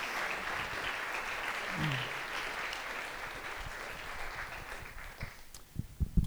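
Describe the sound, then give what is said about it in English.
A crowd claps for the panelists in a steady, dense wash of applause that holds for several seconds, then thins into scattered individual claps at the end. “If you would, let's give a round of applause to our panelists.”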